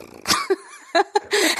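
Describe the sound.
A woman imitates a cat's purr with a series of breathy, raspy vocal bursts and a short wavering hum between them, fairly loud, with no words spoken.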